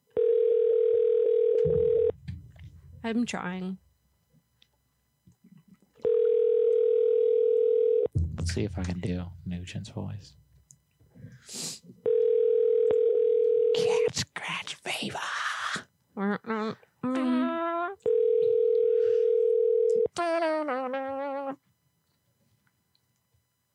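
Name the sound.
telephone ringing tone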